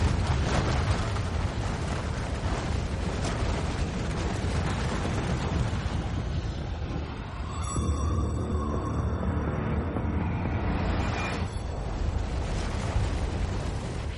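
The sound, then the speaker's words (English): A massive explosion, imagined as 500 times stronger than blowing up all of Earth's nuclear arsenal at once, roars continuously and loudly, deep and heavy with a broad windy hiss on top, barely easing midway before surging again. “Now imagine that 500 times stronger. That's the kind of explosion that we're imagining here.”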